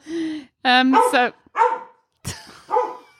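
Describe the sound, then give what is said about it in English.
A female dog barks several times, a run of sharp, tonal woofs and yips spaced unevenly across a few seconds, loud and clear with no one speaking over them. “There's the dog. She just had to.”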